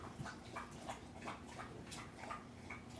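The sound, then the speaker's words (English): A dog whimpers in a steady series of short, high, whiny cries, about three per second, fairly quiet over a low background hum with no talking. “Elijah probably didn't have a dog.”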